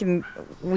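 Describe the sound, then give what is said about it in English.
A small dog gives two short, sharp yaps about half a second apart, clear, with a brief quiet gap between them. “It was yapping for a second, so I thought maybe she might have heard that.”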